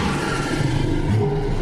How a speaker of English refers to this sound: Okay, last one. Me sees something with a big, hairy mane that makes a loud roar. Did you say a lion?